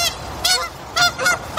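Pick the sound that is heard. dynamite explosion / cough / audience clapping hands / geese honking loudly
geese honking loudly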